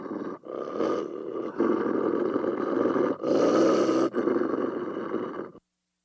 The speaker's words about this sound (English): Wolf number one. Here's a wolf.